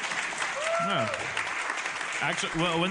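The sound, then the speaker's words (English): An audience bursts into a steady wash of clapping, dense and fairly loud throughout, with a few voices calling out and whooping over the applause, as those who are from Rhode Island are asked to clap. “Who do we have here that's actually a Rhode Islander? Clap.”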